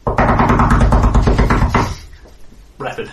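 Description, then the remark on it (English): A guard pounds a rapid flurry of loud, heavy knocks on a door in the middle of the night for nearly two seconds, then stops, followed by a brief softer sound after a short pause. “And the guard hammers on the door.”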